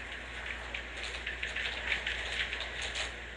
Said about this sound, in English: Oh, bitch, it's raining. Why are they so forceful?